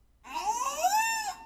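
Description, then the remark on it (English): A 14-year-old female killer whale (orca) named Vicky imitates a human word: one drawn-out, squeaky, wavering call about a second long, rising then sliding back down in pitch, loud and alone without other voices. “It is a 14-year-old female killer whale, or orca, named Vicky.”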